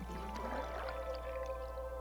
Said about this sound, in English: Someone is poling this boat. I can't see who or what it is.